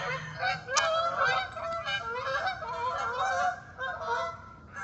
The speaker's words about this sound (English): Goodbye from the geese here in Jacksonville, Florida.